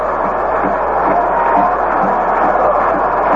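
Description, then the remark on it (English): A baseball stadium crowd at a Mets–Dodgers game, tied 4–4 in the bottom of the eighth inning, cheering in a loud, steady roar, a dense wash of many voices blending together with no single voice standing out, holding level throughout. “The crowd has come alive here in the bottom half of the eighth inning.”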